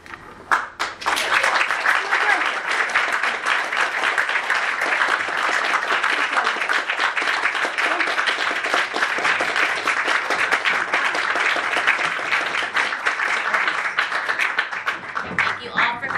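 Sustained audience applause at a museum talk, a dense steady roar of many hands clapping that starts abruptly and holds at a loud, even level for about sixteen seconds.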